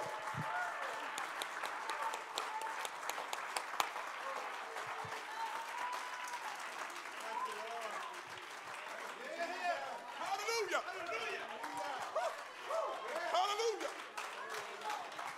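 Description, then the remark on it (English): An audience claps their hands to magnify God in a steady, dense wash of applause lasting the whole stretch, with scattered voices and exclamations rising through it, swelling louder toward the end. “Oh, let's clap our hands and magnify him just for a moment.”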